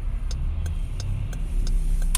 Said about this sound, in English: Oh my gosh, traffic's crazy. What I wanted to say was that, man, this traffic, I want to tell you, when they go back to work, they go back to work. I can't see behind this bus, so I ain't making a move until I do.